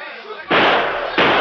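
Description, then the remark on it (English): Two loud, booming gunshots fired through a door in quick succession, each blast ringing out broadly after a brief quiet rumble. “I'm shooting through the door.”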